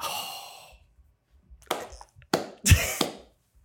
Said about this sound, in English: A slow clap. Yeah, it's a respectful clap.